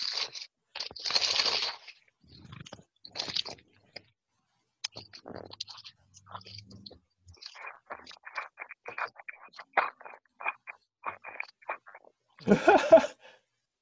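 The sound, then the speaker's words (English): Crunching and chewing noises come in irregular bursts, as if someone is munching crunchy food, ending with a louder rustling crunch; no one speaks. “Who's chewing?”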